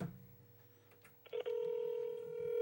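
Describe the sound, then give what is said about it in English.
A phone on speakerphone places an outgoing call: a couple of quick button tones, then a steady electronic ringback tone that holds on, clear, with no one talking. “Oh, I'm gonna call him right now.”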